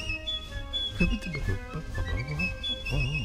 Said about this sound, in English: John Philip Sousa is life. I cannot stop this song until we get to the piccolo part. It's my favorite piccolo part ever. Just think of a little bird. Piccolos remind me of little birdies. Here they come.